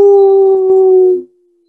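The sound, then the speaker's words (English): A person howls like a wolf: one loud, sustained note held at a steady mid pitch for over a second before it abruptly drops away. No other sounds accompany it. “My heart sets itself on fire and I howl.”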